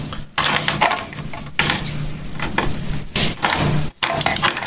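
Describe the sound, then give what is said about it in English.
Dice rattle and clatter across a hard surface in a few loud, bursty rolls over about five seconds during a tabletop game, with a faint low hum underneath and no talking. “Dice rolling. There's a lot of dice rolling in this game, if you haven't noticed.”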